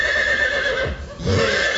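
A horse whinnies loudly, a shrill, wavering neigh that dips briefly in the middle before rising again, heard alone with no talking.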